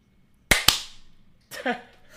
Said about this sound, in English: And then we high five. And then we high five, just like this.